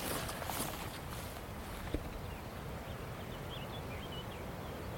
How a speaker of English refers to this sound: Oh, I can hear a chiff-chaff in the distance.